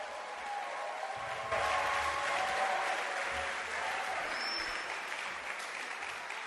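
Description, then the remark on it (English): A crowd applauds steadily in praise of the Lord, a dense wash of many hands clapping that swells slightly after the first second and holds at an even level throughout, with faint background voices. “The Lord a wonderful clap of praise.”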